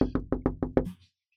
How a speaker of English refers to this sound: A few moments later, you hear a rap at the far end of the hallway. A few moments pass, and there's a rap at Guru's door.